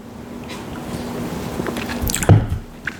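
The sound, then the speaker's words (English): Someone takes a quick sip of a drink, a short wet slurp and swallow against a low, steady background hum, with no talking. “I'm gonna take a sip first.”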